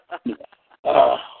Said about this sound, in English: I had to sniffle there for a little bit.